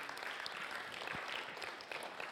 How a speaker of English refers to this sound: Hallelujah. Amen. Let's give God a big clap.